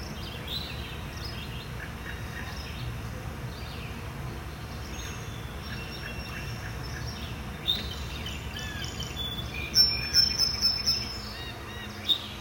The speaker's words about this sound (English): Birds are really tweeting and all. There's a big one over there on that branch. What is that?